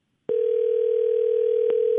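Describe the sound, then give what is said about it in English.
A steady telephone dial tone, as a call is placed to a relative, starts abruptly and holds at an even pitch, loud, with a faint click partway through and no voices. “So I want to get her on the phone and talk with her”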